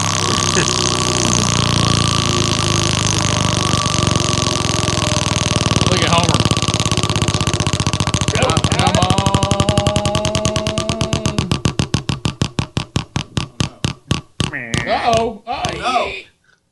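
A large prize wheel spun for a caller on the 100.3 The River radio show whirs with rapid clicking that blurs into a loud buzzing drone, then gradually slows into distinct, widening ticks before coming to a stop, with brief vocal exclamations over it.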